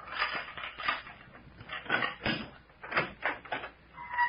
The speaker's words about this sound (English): I sure am, and I'm going to throw open the door.